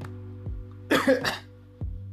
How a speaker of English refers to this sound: That wasn't a lie cough. That was a cough out of just random nowhere.